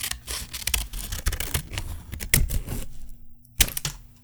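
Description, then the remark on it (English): Scissors snip repeatedly in quick, irregular crisp clicks and crunches for a scissor-cutting ASMR video, with a brief lull before one sharp, louder snip near the end. No voices. “Welcome to Scissor Cutting ASMR.”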